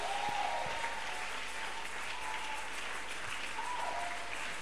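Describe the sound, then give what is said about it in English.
Sustained applause from a sizable audience for panelists as they return to their seats, a dense, steady wash of clapping that fills the whole stretch at an even, moderate level, with a faint tonal hum underneath. “Please, let's keep clapping for them as they return to their seats.”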